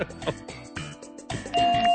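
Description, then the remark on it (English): An electronic doorbell chimes through a series of bright, clear tones, ending on a steady sustained note, with no one speaking. “Oh, sweetest bell.”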